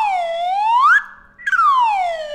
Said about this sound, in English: This is the old slide whistle, Swanee whistle, slide whistle.